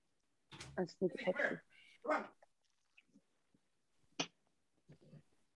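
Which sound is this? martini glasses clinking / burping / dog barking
dog barking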